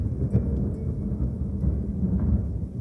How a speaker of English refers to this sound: He gets all the way outside, standing in the raindrops, the lightning flashing from distance, lighting from one part of the earth and shining onto the other.